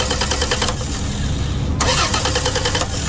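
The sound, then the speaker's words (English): A car engine cranks with a rapid, rhythmic chugging that never catches, pauses for a moment, then cranks again just as fruitlessly. Loud, with no voices. “Car problems keeping you in last place?”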